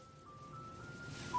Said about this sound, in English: What is going on? I think there's an ice cream truck outside my house.